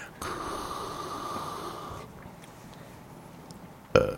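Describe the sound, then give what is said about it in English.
A single drawn-out, raspy belch lasting about two seconds, fairly loud, followed by quiet and then a brief sharp knock near the end. “I get a belch.”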